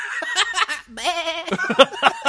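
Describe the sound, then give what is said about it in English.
A person does a wavering, nasal goat bleat impression, a sustained quavering cry in the middle, surrounded by bursts of laughter and chuckling. “You're really good at that, you know. Thank you. I've practiced.”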